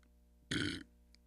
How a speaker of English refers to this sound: My burp.